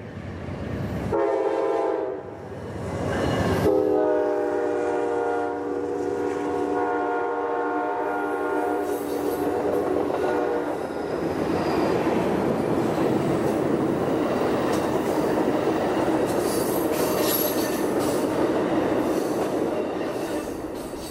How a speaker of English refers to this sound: I would hate to get caught at a level crossing if that train's passing.